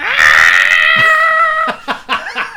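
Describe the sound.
A voice imitates screaming spirits: a loud, high, sustained wail held for over a second, then breaking into a few short, choppy shrieking bursts.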